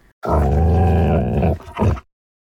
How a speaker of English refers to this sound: Tonto entered the room and stood in front of Ortega, growling.